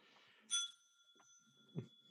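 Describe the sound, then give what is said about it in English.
A single bright bell ding, a sound effect awarding one point for a good point, rings out clearly and sustains with a long, shimmering decay, followed by a soft low knock near the end. No one speaks. “That's not the you're done bell. That is the 1 point awarded for a good point.”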